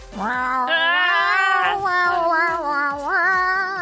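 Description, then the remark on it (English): A person imitates a howling dog: one long, loud, wavering vocal tone lasting nearly four seconds, sliding up and then holding, with a wobbly vibrato, over faint regular notes underneath. “I mean, I sounded like a howling dog right there.”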